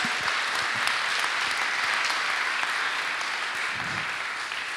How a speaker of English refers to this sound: Amazing. Cheer and clap. Woo!